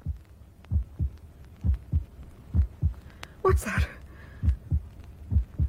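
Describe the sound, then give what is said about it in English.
A person's own heartbeat thumps steadily in low, muffled double beats, about seven prominent lub-dub pairs, while a voice briefly speaks over it midway. “How silly of me. My own heartbeat.”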